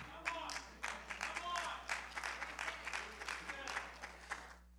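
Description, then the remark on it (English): A handful of audience members, about four, clap their hands in scattered, uneven bursts for a few seconds, with faint crowd murmur underneath before the clapping trails off. “I got four hand claps.”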